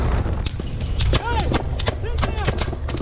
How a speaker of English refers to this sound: There's a kind of infamous video that started making the rounds in Mexico a few years ago. It was about a controversial shooting. And just a quick warning, you're about to hear gunfire.